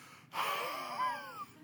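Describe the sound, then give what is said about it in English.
A voice makes one long, exaggerated breathy exhale blown onto someone, fairly loud, lasting about a second with a raspy, slightly voiced wheeze that rises and falls before fading. “Why is Jesus breathing on them? Can you imagine somebody coming up to you and just”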